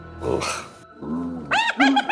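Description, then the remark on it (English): A human voice imitates a richly adorned gnoll speaking to other gnolls in a cackling, barking language: a harsh growl, a lower rasping stretch, then a burst of high yipping, cackling calls, loud and with no ordinary words. “One of the more richly adorned gnolls turns to the other ones and starts speaking in a cackling kind of barking language.”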